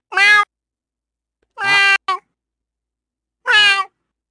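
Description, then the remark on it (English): A person imitates a cat, giving three clear, drawn-out meows spaced a second or more apart, fairly loud, with silence in between and no other talking. “But then I'll actually fucking meow.”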